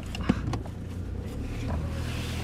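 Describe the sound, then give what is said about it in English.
A steady low engine rumble from inside a moving farm car being driven to a 200-ton pile of manure, with constant road noise and a faint rattle or thump near the start, no voices. “when I asked him how climate policy is affecting him, he told me to hop in the car because he wanted to show me a 200-ton pile of manure.”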